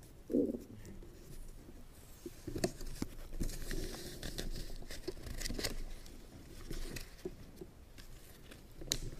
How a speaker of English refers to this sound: One morning, during a meditation retreat, I heard the sound of a bird. A mundane event, right?